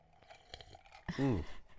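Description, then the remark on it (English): Soft sipping and wet mouth clicks from someone taking a drink of a cocktail, followed by a short voiced exhale of satisfaction. “Excuse me, I'm going to have a sip of my beautiful cocktail that you brought me.”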